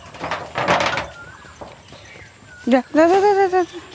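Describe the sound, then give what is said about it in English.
Cows inside a house, in the same room as the people, thump and shuffle their hooves in a short cluster of dull knocks, followed by quieter scuffs, then a brief voice sounds toward the end. “If the mosquitoes bite them, they'll thump around. Yeah. The cows are in the same room as us.”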